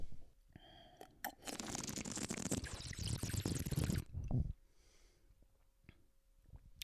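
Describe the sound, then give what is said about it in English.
A loud burst of bubbling, gurgling water as a person drinks during a water break, like sipping or blowing through liquid so it churns like a bong, lasting about three seconds before stopping abruptly into quiet. “hold on, water break”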